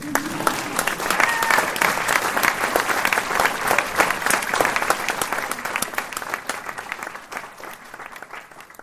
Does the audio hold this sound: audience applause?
yes